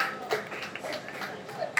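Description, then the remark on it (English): An audience applauds a show's co-creator during cast and crew introductions, a dense, steady patter of many hands clapping at moderate volume, with a couple of sharper claps popping out near the start and end. “Round of applause.”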